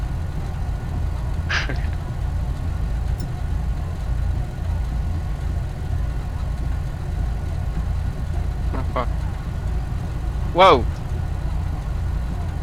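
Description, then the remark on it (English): A tow truck engine in a video game idles with a steady, low, continuous rumble throughout, while a few brief high chirps pop up and a voice briefly exclaims over it near the end. “That's the tow truck, isn't it?”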